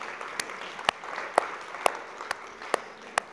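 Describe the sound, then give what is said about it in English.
Several people clap together in a steady, evenly spaced rhythm, about seven sharp hand claps standing out above a softer wash of scattered applause. “Yeah, we might as well, look, let's give people a clap too.”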